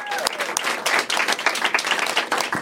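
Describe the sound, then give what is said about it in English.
A live audience applauds, many hands clapping in a dense, steady patter that stays fairly loud throughout with no voices standing out. “A big round of applause for Elliot Hochberg, who helped us with all of the video and the audio.”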